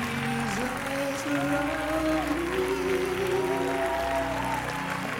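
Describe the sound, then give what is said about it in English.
An audience claps steadily throughout, a dense, continuous wash of hand claps layered over sustained musical tones and voices that hold long notes beneath it. “Look at y'all clapping.”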